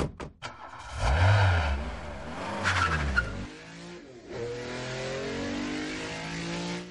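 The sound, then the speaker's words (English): A car engine revs hard and tires squeal as it skids and speeds away, loud, with a few sharp clicks at the start and the engine roar continuing throughout. “What do we do? Car!”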